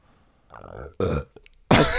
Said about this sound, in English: I think your burp was just disagreeing with you there. Yeah, my burp was like, trying to interrupt me.